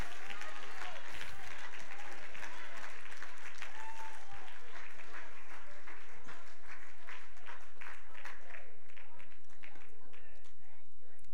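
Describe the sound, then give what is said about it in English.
A church audience claps hands to give glory to God in a dense, sustained wash of applause, with many overlapping claps forming a steady, bright rattle that thins slightly toward the end, with scattered voices underneath. “Beloved, if you are eternally grateful for his grace, his power, his strength, his favor, his victory, somebody clap your hands and give him glory in this place.”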